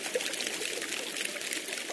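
Spring water pours in a steady, continuous stream from a spring on a gentle mountain on this side of Kruščica, a bright splashing hiss that holds evenly throughout, with no voices over it.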